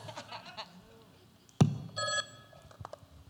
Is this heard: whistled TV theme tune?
no